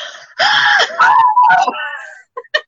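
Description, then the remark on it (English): A person imitates a child screaming after jumping into a hot bath: a loud, strained wail that bends downward in pitch over about two seconds, followed by a couple of short, sharp gasping yelps. “The kid jumps in and the mum's in the kitchen, like the kid's screaming, and the mum's going, it's like, Jesus, this is worse than the scarecrow down the road.”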